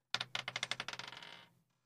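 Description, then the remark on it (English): Heavy marble dice, rolled for a constitution saving throw, clatter across a tabletop in a quick run of sharp bouncing clicks that tighten and fade as they settle. The sound is clear, with no voices. “I'm going to use some marble dice for this.”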